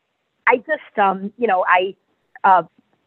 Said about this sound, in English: Sorry, my phone decided it wanted to start talking. okay, it stopped.